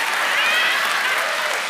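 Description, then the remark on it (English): An audience claps steadily during a sermon about the Word of God, a dense patter of many hands at an even, fairly loud level throughout, with no voices rising above it. “I see you clapping, but you didn't read it.”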